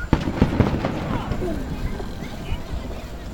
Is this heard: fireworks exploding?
yes